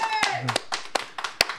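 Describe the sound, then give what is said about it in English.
Sparse, uneven clapping from a small audience for a volunteer coming up to compete in a sex trivia game: about nine sharp claps spread over under two seconds, some overlapping, with a brief voice or whoop at the start. “Applaud for him.”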